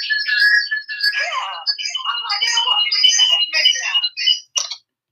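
A phone rings with an incoming call from Tina: a busy, warbling electronic ringtone melody of high chirping tones plays steadily for about five seconds, then cuts off.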